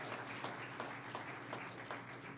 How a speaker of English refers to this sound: If you believe that, clap your hands. Hallelujah.